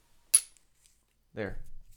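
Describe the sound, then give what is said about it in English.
Two small glass bottles of Underberg tap together once in a toast, a single bright, ringing clink, followed a moment later by a voice. “Chink. It's a single cheers.”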